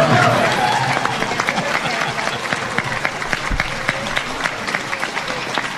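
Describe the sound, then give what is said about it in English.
A crowd applauds a governor's victory-night speech, steady dense clapping filling the whole clip at a fairly loud, even level with many overlapping hand claps and no clear pauses. “And so with that, give you all a round of applause.”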